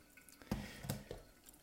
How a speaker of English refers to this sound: So now I'm going to pour. I'm actually going to decide to do the classic. So pour 30 grams until 120.